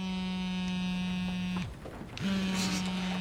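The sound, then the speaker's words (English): A new phone, just switched to vibrate, buzzes on vibrate: a loud, steady low-pitched rattle lasting over a second, a brief pause, then the buzzing starts again. No one speaks. “Vibrates louder than the ringer.”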